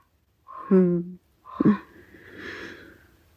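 A raven gives two deep, hoarse croaks, one after the other, followed by a softer, breathy rasping call that trails off.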